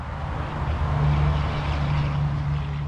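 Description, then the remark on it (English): A steady low rumble and engine drone with a broad hiss of road noise from inside a moving car crossing over I-10 in New Orleans toward Metairie Cemetery. It holds an even level throughout, and no one speaks. “Next, we jumped in the car and crossed over I-10”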